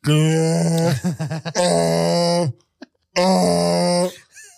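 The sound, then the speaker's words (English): A voice does a loud, strained donkey-like bray: a long harsh groan, a quick wobbling stutter, another sustained groan, then a second long bray after a brief gasp, with no words. “Which, by the way, sounds like the donkey sound that one of the twins made, one of the twin hitmen made in Godfather 3.”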